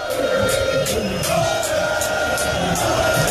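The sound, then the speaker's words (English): A loud, dense crowd of party supporters protests at the election collation center in Techiman South, roaring and shouting continuously, many voices blending into a steady agitated din with rhythmic bursts of chanting or clapping cutting through. “This video shows protest from the crowd.”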